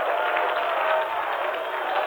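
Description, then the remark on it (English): A church audience clapping hands in praise to the Lord, a dense, steady wash of many overlapping claps with crowd noise mixed in, holding at an even loudness for the whole couple of seconds. “Clap your hands, all ye people, and shout with your voice unto the Lord with the voice of triumph.”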